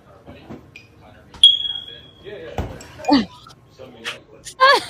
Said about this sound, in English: Okay, so this is what a smoke detector does when you're in the kitchen.